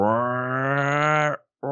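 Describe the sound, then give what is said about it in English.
A creature roar sound effect: a loud, low, buzzy groan held steady for over a second, then a brief silence before a second roar starts. No one speaks. “You can tell there's different like roars that he has.”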